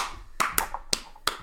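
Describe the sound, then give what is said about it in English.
Five sharp hand claps in an uneven rhythm, crisp and fairly loud, with no talking over them and a faint background hum between the claps. “Why are you applauding so much?”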